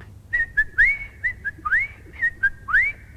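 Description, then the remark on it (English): A person whistles an imitation of a blackbird's call: two short clear notes followed by a rising slurred whistle, a phrase repeated three times in a steady rhythm with no talking. “Now, I don't pretend to do impressions, but not long ago I heard a blackbird making a noise like this.”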